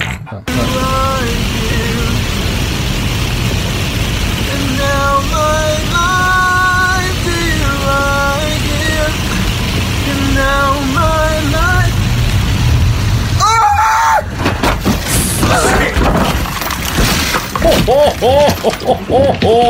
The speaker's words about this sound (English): I want to lighten the mood and play a video of a guy singing in his car that then crashes.